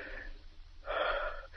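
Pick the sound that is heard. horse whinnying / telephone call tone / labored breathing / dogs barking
labored breathing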